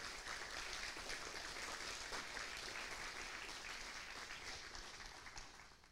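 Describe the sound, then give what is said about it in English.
An audience applauds all of the mothers one morning, a dense wash of many hands clapping at an even, loud level for several seconds before starting to taper off at the end. “Can we just take a moment and give all of our mothers a big round of applause this morning?”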